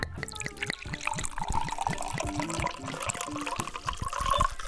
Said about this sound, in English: But I'll tell you what the first thing Lenny would do is he would pour a cool glass of wine.